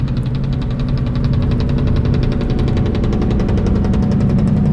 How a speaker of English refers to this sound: Listen to that. That's an 18-wheeler engine braking, which he's not supposed to do. Not until 8 o'clock in the morning. Noise pollution.